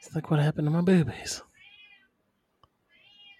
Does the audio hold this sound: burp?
no